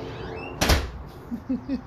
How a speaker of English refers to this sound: All right, close the door. Close the door.